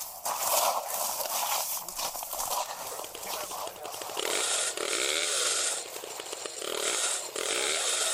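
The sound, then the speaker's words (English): A loud, steady mechanical roar from a hydraulic rescue tool (jaws of life) that first responders are using to open the door of a car down an embankment, its motor droning harshly and rising and falling in pitch in a few strained surges, with no voices. “They're getting the jaws of life.”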